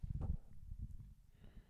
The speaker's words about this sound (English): And the burps are not Pacifico. Trust. The burps are brought to you by like water. And water. Chicken wings.